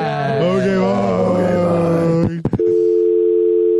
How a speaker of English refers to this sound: Okay, bye. I really hung up on them. Yeah. That was an actual phone.